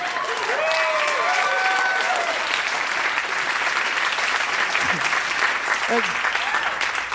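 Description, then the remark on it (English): A large audience applauds steadily for about seven seconds, a dense, even wash of clapping, with a few voices whooping and cheering near the start. “I like that applause.”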